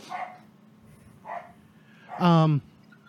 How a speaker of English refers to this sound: And of course, between the baby and the dog, there's lots of racket in the background today.